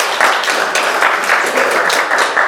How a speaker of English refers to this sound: I think about the families in the Family Promise program, two of which have just graduated this week. That's amazing. We can clap for that, yeah.